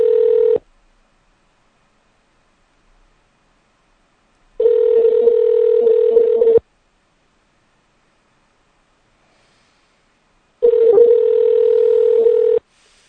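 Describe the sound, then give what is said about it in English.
A telephone ringback tone from a call to Greg Palast's phone repeats three times, each steady electronic buzz lasting about two seconds with long silent gaps between, loud as if heard through the phone line. “That ringing is the most annoying ringing I've ever heard.”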